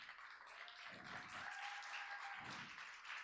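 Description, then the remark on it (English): An audience claps steadily in a dense wash of applause as boys are called up onto a stage, with a few brief murmurs of voices underneath and no single clap standing out. “Yeah, you can give a round of applause.”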